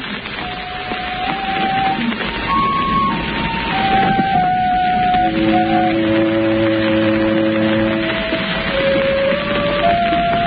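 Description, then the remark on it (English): An alarm bell rings loudly and without pause, a shrill, steady clamor of overlapping tones that shift in pitch over about ten seconds, with no voices. “The bell, Shadow, the bell suddenly sounds.”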